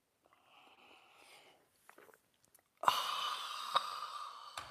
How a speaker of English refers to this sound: And join me now for the unparalleled pleasure, the dopamine hit of the day, the thing that makes everything better. It's called the simultaneous sip, and if you haven't tried it, oh, I feel sorry for you. Today's the day. Go.